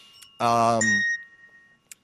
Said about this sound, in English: We have the NBC chimes here. Sometimes in the right order, sometimes not in the right order. We're not NBC.